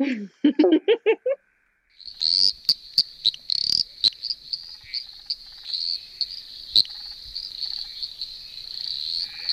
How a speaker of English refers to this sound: So that is a very tiny little frog, the eastern dwarf tree frog, and it's really loud for how big it is. It's less than 2 centimetres in body length, green, tends to live in ponds and reedy places, things like that.